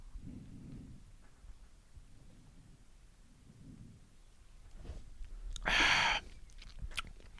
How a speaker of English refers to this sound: I'm going to do a little sippy sip.